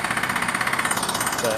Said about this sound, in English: But I may or may not use this depending on how much you can hear the drill. But I'll just start in earnest properly once I get past the building site near where I live. And they're building a block of flats on a corner across the road